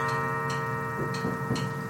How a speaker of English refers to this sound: And there goes the clock.